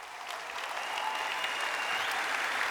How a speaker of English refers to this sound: Stand up again. They didn't see you. That's one of my sons. Give him a big clap.